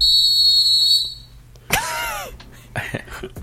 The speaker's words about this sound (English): Load a whistle, we got one, right? Yes, sir. All right, let's do that.